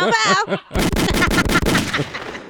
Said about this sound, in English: Give me my gunshots. Oh, shit. Pow pow.